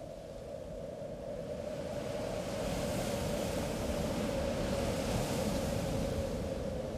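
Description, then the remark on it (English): Loud, steady roar of heavy sea waves mixed with gusting wind at sea on a dark night off the coast of Ireland, a dense continuous rush with no pauses and no voices. “He's in a situation where he's surrounded by mountainous waves, wild roaring seas, which he interprets as the sea folk.”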